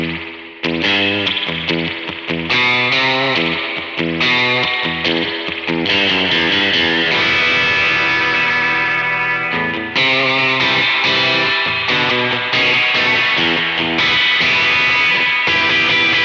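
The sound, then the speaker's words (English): Electric guitar drenched in heavy spring reverb strums loud, sustained chords that blur and wash into one another, with brief gaps between phrases and no voices. “If you would bring down the mix a little bit for a second of the spring reverb.”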